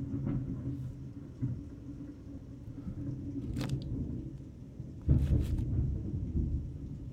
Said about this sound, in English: Oh my gosh, I don't know if you just heard that yet. That was the loudest crash of thunder I've ever heard in my life. That just like scared me a little bit.